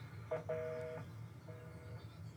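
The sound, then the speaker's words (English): A telephone in an office rings in two short tonal bursts, the second fainter, sounding muffled and fairly quiet over a low background hum, with no talking. “I mean, how many phone calls do we get here to this office?”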